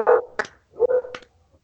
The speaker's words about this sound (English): Even the dogs are barking for you, Danny. You hear that?